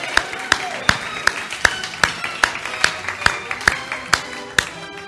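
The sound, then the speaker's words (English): Applause for graduates comes as steady, rhythmic clapping: about a dozen sharp, evenly spaced claps at a brisk beat, fairly loud and crisp, with no talking over them. “Let's give all those graduates a great round of applause.”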